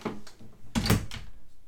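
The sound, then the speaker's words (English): A door bangs at home during a recording with a heavy, loud thud, framed by a couple of softer knocks and rattles just before and after, no voices present. “I'm sorry about the door, everybody.”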